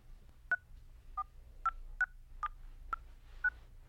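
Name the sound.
phone keypad dialing tones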